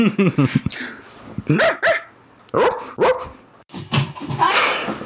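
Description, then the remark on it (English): People barking like dogs, a rapid series of loud yips and woofs in quick bursts, several voices overlapping with short pauses between volleys. “We're just gonna have to edit a part in the video that is just us barking.”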